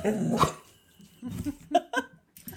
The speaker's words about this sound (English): Shut up, dog.